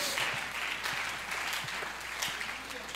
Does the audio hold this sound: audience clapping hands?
yes